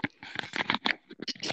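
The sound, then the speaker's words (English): Someone clears their throat with a series of short, rough, raspy bursts that come in quick uneven pulses and end in a longer scratchy rasp. No words are spoken. “People are gonna be so annoyed because I keep having to clear my throat.”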